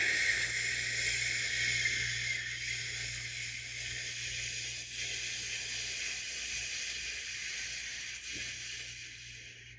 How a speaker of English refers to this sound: I always stay on the safe side and prolong the breathing out even longer. So breathe in and then really, really long breath out.